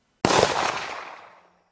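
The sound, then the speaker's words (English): A single sharp bang like a gunshot cracks out suddenly and loud as two billiard balls made of highly flammable early plastic hit each other and explode, then its broad rumbling tail fades away over about a second. “Billiards is a game a bit like snooker or pool, and when the two balls hit each other, which happens all the time, it would create an explosion, like a gun going off.”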